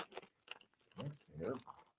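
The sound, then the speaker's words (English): Chicken-flavoured Twisties corn chips being crunched: a quick run of dry, brittle crunches, followed by two louder, muffled chewing bursts with a lower, voiced tone. “Chicken twisties.”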